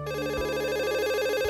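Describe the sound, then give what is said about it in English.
A telephone rings steadily with a bright, warbling electronic tone, clear, with no voices over it. “So let's listen to the phone conversation now.”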